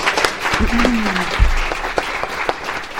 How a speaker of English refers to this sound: I actually watched her video on the Girl Up website, and it was terrific, so I think we should all give her a round of applause.